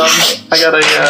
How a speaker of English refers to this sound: It's a very strong moonshine-esque. How ironic. Very clear to the, you can look, you can see right through it. It's like I'm going to sniff it. It's white lightning. I'd like to sniff it. You remove the cork. You make a snoof check.